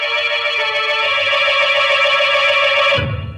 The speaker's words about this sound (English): I was ready. I picked up the phone and asked the operator to connect me with the police.